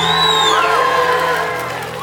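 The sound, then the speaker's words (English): A church audience shouts and cheers loudly to the Lord during a Sunday morning service, with whoops and sustained yelling for a couple of seconds, voices blending into a continuous roar that eases slightly toward the end. “Give the Lord a mighty shout.”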